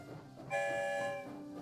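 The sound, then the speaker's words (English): A train arriving at a station, marked by one loud, steady horn blast lasting under a second over a low rumbling background, with no voices. “I'm going to give you an early Christmas gift and play an episode for you as soon as the story train arrives back to the station.”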